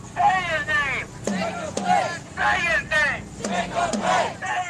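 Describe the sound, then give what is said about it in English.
A large protest crowd in the streets of Kenosha, Wisconsin, after the police shooting of Jacob Blake, chants and shouts in rhythmic waves, voices rising and falling in unison over a steady rumble, with a few sharp knocks cutting through the loud, continuous roar. “People in Kenosha started taking to the streets.”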